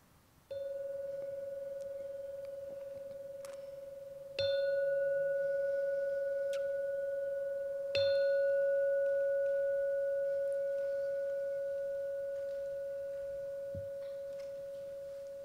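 A meditation bell is struck three times, about four seconds apart. Each strike gives a clear, steady, mid-pitched tone that rings on and fades slowly into the next, with no talking.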